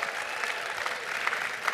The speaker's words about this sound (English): Everybody who's here live, let me hear it. Let me hear you give a cheer. Are you glad to be here?